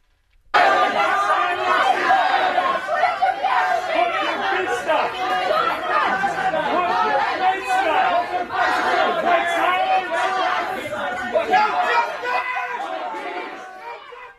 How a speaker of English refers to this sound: a crowd gathers around the outdoor seating area at which she is at, and they surround her and they start chanting in her face.